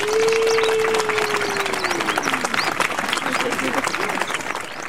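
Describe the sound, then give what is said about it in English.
Steady applause from a crowd fills the whole stretch, dense and continuous, with a sustained tone sliding downward beneath it early on and a few whistles or cheers poking through. “Yes, yes, round of applause of the nude Mad God.”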